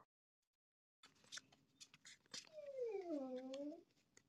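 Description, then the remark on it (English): A dog lets out a single drawn-out whimper, a high, wavering whine lasting over a second, clear, following a stretch of faint scattered rustling and clicks. “Dog, shut up.”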